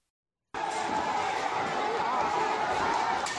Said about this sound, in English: Wow. I'm watching this video. It's amazing. Just barriers being knocked down, huge crowds rushing. I'm pretty sure this is video of when the final batch of McRibs was made available.